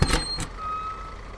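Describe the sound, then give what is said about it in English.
A bus pulls up with two short, loud bursts of air-brake hiss, followed by a thin steady whine over a low engine rumble, dropping a passenger off by an office. Nobody speaks. “I was stir-crazy and sick of buses by the time the last one dropped me off by my office.”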